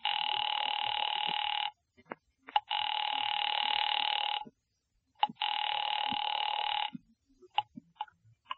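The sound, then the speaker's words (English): A telephone line rings in three long, steady electronic bursts separated by short pauses, loud, with faint clicks and rustles in the gaps, as a call is placed to an office. “Ringing Murray Hill 40098.”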